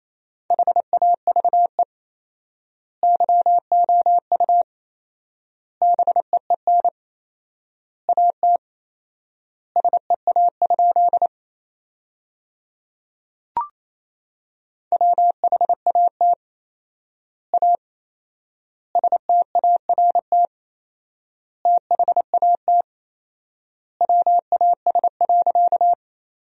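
Morse code sent at 28 words per minute with 4x word spacing, sending sentences from the top 300 words: a single steady mid-pitched tone keyed in quick dots and dashes, clustered into words with long silent gaps between them. A brief click sounds once midway.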